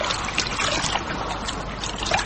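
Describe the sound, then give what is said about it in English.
River water trickles and dribbles steadily for a couple of seconds, a splashy pouring sound as it is scooped up in a forage cap and spills back out, with no voices. “I'll get you some water. Give us your forage cap.”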